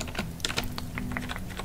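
Rapid, irregular keyboard typing with crisp clicking keystrokes during a hotel check-in at the Mahogany Lodge Hotel, some louder taps standing out, over a low steady hum with a faint tonal drone.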